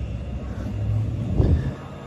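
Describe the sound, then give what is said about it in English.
A diesel turbocharged engine rumbles steadily with a deep, low drone. A brief swell in loudness comes partway through as it cruises, with no voices over it. “That's a diesel turbocharged engine.”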